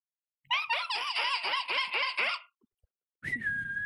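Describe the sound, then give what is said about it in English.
A person imitates a bird, letting out a quick run of about eight harsh, nasal squawks, then after a brief pause a high, steady whistling tone over rough noise. “squawk us out.”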